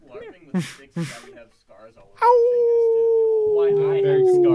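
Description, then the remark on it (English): After a few seconds of brief voices and a couple of sharp bursts, a dog lets out a loud, sustained howl that slowly drifts downward in pitch until the end. “Oh, shit. He brought the dog. Hey, dog.”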